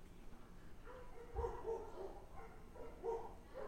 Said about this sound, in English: Are there dogs? Do you have a dog fighting ring next to your house? I guarantee the mic's picking this up.